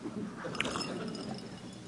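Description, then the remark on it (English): A speaker giving a talk takes a drink of water: one faint clink of a glass, then soft, quiet mouth and swallowing sounds over a steady low background hum, with no talking. “But first, I'm going to take a drink of water.”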